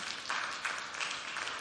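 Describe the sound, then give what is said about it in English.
An audience claps together, a dense, steady wash of many hands applauding at an even, moderate level throughout, with no voices standing out. “It's a good place for you to clap.”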